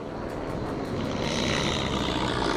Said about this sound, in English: They take off. There's a plane waiting for them. They fly out.